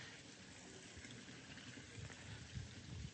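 Water runs and trickles steadily in a church, a continuous splashing flow with a soft low gurgle underneath, fairly quiet, with no voices.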